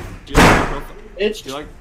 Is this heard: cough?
no